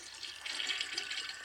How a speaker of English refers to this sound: Sorry, it's just the flush.